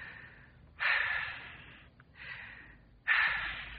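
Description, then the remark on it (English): Two deep breaths, each a long, airy inhale followed by a slower exhale, loud and unhurried with no talking over them. “Take two deep breaths.”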